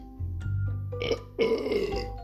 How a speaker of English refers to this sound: See? I told my body to do a burp, right? So I what I wanted to do then was highlight the digestive system again. But it was my brain that controlled everything that happened then.